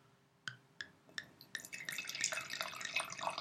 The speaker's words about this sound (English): You know, kind of the perfect dessert, chocolate and wine. Let's pour it.